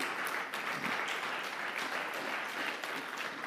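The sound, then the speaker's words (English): An audience applauds steadily to welcome a volunteer invited up, a dense crackle of many hands clapping at once, sustained and fairly loud throughout with no voices standing out above it. “Yeah, give him a big round of applause.”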